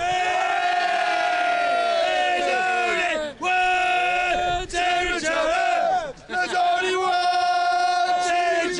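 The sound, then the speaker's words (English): A rugby crowd at Charlton North Rugby Club chants and cheers loudly and continuously during a first team cup match, many voices yelling together in a sustained roar with rising shouts, briefly dipping a couple of times before surging again. “Can we have a little banter from the crowd?”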